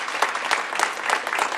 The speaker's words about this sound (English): It's nice to have a big crowd to applaud. Thank you.